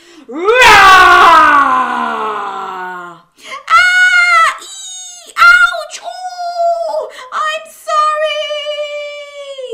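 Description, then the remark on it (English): A voice imitates a big dragon roar: a loud, harsh, two-second cry sliding downward in pitch, followed by several higher, drawn-out wailing vocal calls. “Can you do a big dragon roar with me?”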